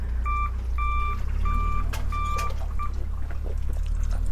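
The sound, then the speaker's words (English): A truck reversing back and forth outside a house sounds its reversing alarm, a steady series of about five high, electronic beeps at an even pace, heard over a constant low engine rumble. “I thought he was going to go up the road and turn and go, but he seems to be doing that back and forth, let me sit here outside your house and beep thing.”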